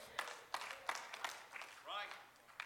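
One person claps steadily, about five or six sharp claps in an even rhythm, followed by a short rising vocal sound like a laugh and one final clap.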